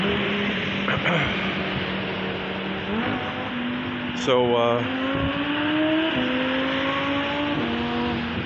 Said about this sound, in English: Those cars. We've got three race cars or Lamborghinis or something. Sports cars.